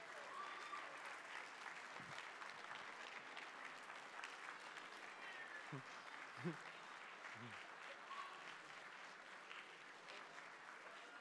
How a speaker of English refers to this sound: And you're tired of clapping.